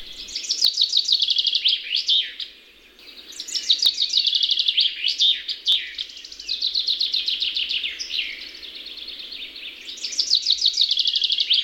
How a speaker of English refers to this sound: Another member of the finch family that has rather harsh sounding notes is the chaffinch. Very common bird and present in most gardens and churchyards.